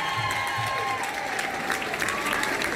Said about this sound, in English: Best Barber. Okay, our bronze award goes to Joe's Barbershop in Cashel. Come on, give a round of applause.